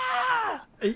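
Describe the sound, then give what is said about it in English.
A man's voice imitates the pained scream of the character Father Myers as a blade slices his ear off in a film scene: a loud, strained cry that slides downward in pitch for about half a second, breaks off, then a brief lower groan follows. “And Father Myers turns his head, blood spurting out, and screams, "Ah!"”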